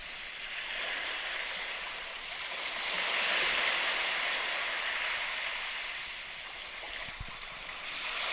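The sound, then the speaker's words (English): A steady, hissing wash of ocean surf, the ocean waves sleep soundscape from the Calm app played on a phone, that gently swells louder and then recedes, a continuous soft roar of waves with no voices. “That was the ocean waves one.”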